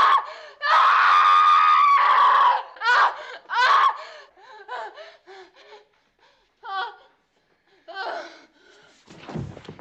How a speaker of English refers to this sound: And she also gives one of the longest series of screams I've ever watched on screen.